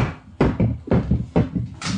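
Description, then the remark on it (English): A door bangs open amid a quick series of four loud, evenly spaced thuds, like the hurried footsteps of someone running out the door. No one speaks. “If you have a Bud Light Lime, I would chase that out the door”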